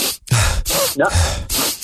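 A person quickly sniffs another person before setting off into traffic: about five breathy, hissing inhalations in a rapid, uneven rhythm, fairly loud, with a few faint vocal murmurs between them and no clear speech.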